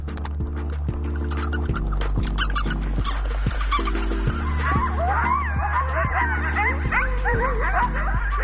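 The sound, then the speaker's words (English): Rapid bat calls give way to a chorus of high, wavering coyote yips and yelps, with a snake's rattle mixed in over a steady, pulsing low drone; all are animals living in Chicago. “Those are bats, a coyote, and a snake, and they're all animals that call Chicago home.”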